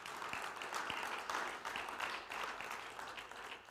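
A crowd applauds steadily for the Lord, a dense wash of many hands clapping at once that holds at an even level throughout, with no voices on top.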